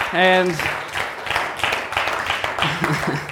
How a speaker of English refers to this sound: I would like everyone to give a round of applause for Pastor Phil